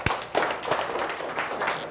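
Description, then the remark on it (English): An audience at an evening nutrition talk gives itself a round of applause: many hands clapping at once in a dense, steady crackle of sharp overlapping claps, moderately loud with no voices on top. “So everybody give yourself a round of applause.”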